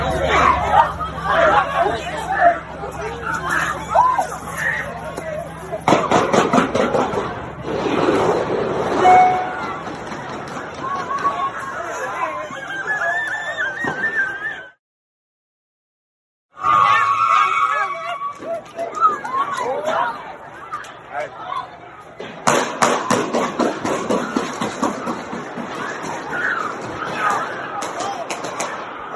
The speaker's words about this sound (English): So as you can see, there was a lot of commotion going on, and you can hear the gunshots firing back and forth